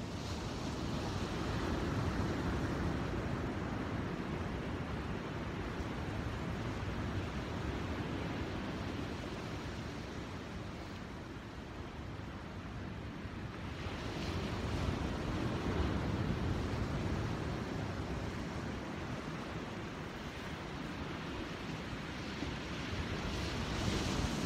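Continuous roar of ocean surf, with waves breaking and washing in a broad rushing swell that rises again midway. Some wind buffeting adds a low rumble, and no voices are heard.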